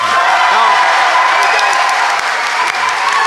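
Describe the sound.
An audience breaks into sustained, loud applause to vote for the side that made the best case, dense clapping filling the whole stretch at a steady level, with faint voices and a few cheers mixed into the wash.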